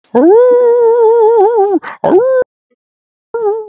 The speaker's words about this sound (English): You hear wolves baying not too far away, and it appears that some things are approaching.